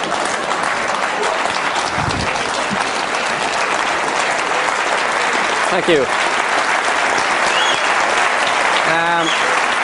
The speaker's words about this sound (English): Okay, give her a round of applause.